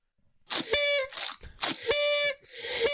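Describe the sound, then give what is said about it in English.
A whistle sound effect blows twice in quick succession, each shrill, reedy blast wrapped in loud breathy hiss, like a steam whistle, with airy rushing noise between and after the blasts. “Hit the whistle, Emma VP behind the glass.”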